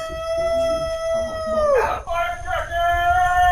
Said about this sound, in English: The dogs were barking, and we go outside, and this guy is screaming.